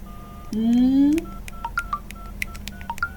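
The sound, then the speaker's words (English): A rising electronic tone gives way to a quick, uneven run of short telephone keypad beeps, each a crisp dual-pitched chirp, moderately loud over a low background hum. “Could you put down that damn phone for 5 seconds and tell me what...”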